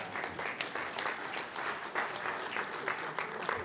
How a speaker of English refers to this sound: Just give yourselves a round of applause.